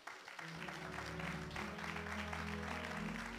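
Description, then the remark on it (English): An audience claps their hands, a dense, steady patter of applause that fills the whole stretch, with a low sustained musical tone droning underneath. “Clap your hands, put your hands together.”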